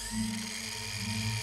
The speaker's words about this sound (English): Resuming saw.